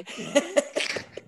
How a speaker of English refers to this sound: Oh my God. Yes, coughing. We got him. We broke him. Oh man.